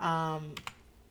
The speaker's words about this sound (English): And let me just double check. I know you guys love to hear me typing on the fucking mic, but I gotta do it sometimes.